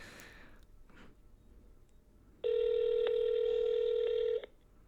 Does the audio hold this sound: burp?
no